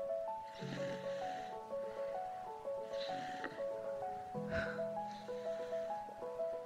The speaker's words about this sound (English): Oh my god, now he's snoring.